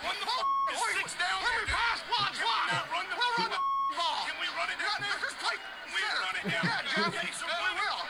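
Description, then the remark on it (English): Two brief, steady mid-pitched censor bleeps, a few seconds apart, cut into a stream of loud, agitated speech from a man who keeps talking throughout: Peyton Manning, mic'd up, yelling at Jeff Saturday, with his swearing bleeped out. “A lot of F-bombs bleeped out there.”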